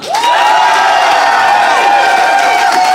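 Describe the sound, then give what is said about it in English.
A loud, sustained burst of audience applause and cheering, with whoops and raised voices over steady clapping from a crowd applauding as a vote for one team's case, filling the whole moment. “But if you think Felicity and Ben made a case worthy of carrying a Slazenger Sport tennis racket, applaud now.”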